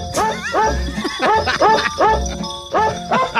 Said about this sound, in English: the worst Christmas song. And I'm going to go with Jingle Bells by ….